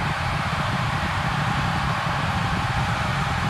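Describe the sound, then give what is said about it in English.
A death whistle blown in one unbroken, harsh, rushing shriek lasting the whole clip, loud and noisy like wind-driven screaming, with a low rumble underneath and no voices. “Dead whistle. It's very unique.”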